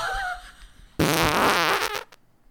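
A loud, sputtering fart about one second long bursts in abruptly after a quiet, faintly tonal lead-in, then cuts off into near silence.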